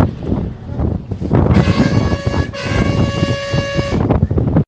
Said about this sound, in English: And then when the bus started driving, and I recorded a little bit because I wanted to add it to the podcast, but this is how it sounded.